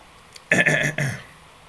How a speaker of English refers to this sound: As I clear my throat, and I see my stream is working good.